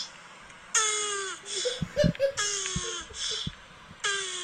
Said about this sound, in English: Dude, turtles sex sounds when they fuck is great.